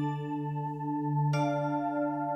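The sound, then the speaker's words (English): A sustained electronic chime marking the beginning or end of a scene rings out alone, a steady tonal swell that brightens partway through as a second, shimmering chord layers in, holding at moderate volume to the end. “And you can tell when the scenes begin and end because of our cool chime noises.”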